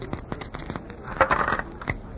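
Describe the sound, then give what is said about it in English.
Dice thrown for an 8 clatter and tumble across a hard surface: a scatter of quick clicks, then a brighter burst of rattling before a last tap as they settle showing 5 and 3, fairly quiet. “It is not nice for a doll to be carrying dice. Look, what do you want me to throw? Try an 8”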